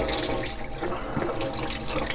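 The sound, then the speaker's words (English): Water runs steadily from a kitchen tap into a sink, a continuous rushing splash that holds at an even level throughout, with no voices. “Residents can bathe, wash dishes, and do laundry with tap water.”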